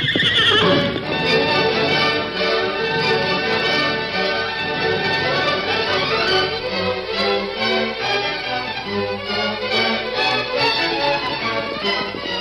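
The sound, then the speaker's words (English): Horses of the Lone Ranger, Tonto and Jeff, reined in on the bank of a stream, neigh and whinny loudly while hooves clip-clop in a steady rhythm, filling the whole stretch with a dense sound and no voices. “That afternoon, the Lone Ranger, Tonto, and Jeff reined in their horses on the bank of a stream, not far from a steep cliff latticed with scrubs and vines.”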